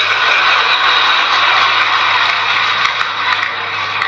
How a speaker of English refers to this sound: I have two words for you. Predator drones. You will never see it coming.